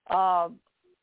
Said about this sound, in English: it's still recording muffled.